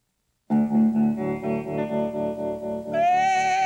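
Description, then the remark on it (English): After a brief silence, the needle is put on a vinyl record and music starts abruptly: dense, sustained electric tones with a warbling, effects-heavy sheen. It plays at a steady, fairly loud level and turns brighter toward the end, with no voices. “I'm putting the needle on the record.”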